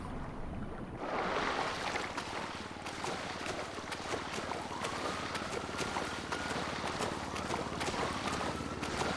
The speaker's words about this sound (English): Hop in the water. Big dive.